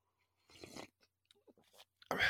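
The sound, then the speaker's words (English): Quiet sips of coffee: a short slurping draw, a few small mouth and swallow clicks, then a louder, noisier slurp at the end. No one talks. “Let me have a sip of coffee”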